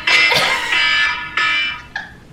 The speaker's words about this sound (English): oh, we never talked about her foghorn alarm. So listen, so this is what I wake up to every morning. It's so beautiful.